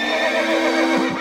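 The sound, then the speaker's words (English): A horse whinnies loudly, a single quavering neigh with a shaky, rising-and-falling pitch that fades slightly toward the end. “He crawled through the fence, walked across the pasture, and approached the horse.”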